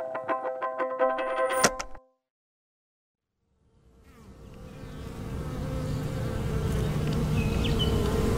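A short musical sting cuts to silence, then a dense, droning buzz of honeybees fades in and swells steadily louder, like a busy swarm, with no one speaking.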